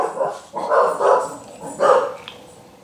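Dogs bark in a short burst of about four sharp woofs, spaced unevenly over a few seconds, with no talking.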